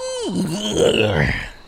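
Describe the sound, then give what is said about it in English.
A voice imitates a rainforest frog's croak: one drawn-out, gravelly call that slides down in pitch, then rumbles on as a low, rough grunt, loud and steady for under two seconds. “Okay, enough with the croaking. We heard you, frog.”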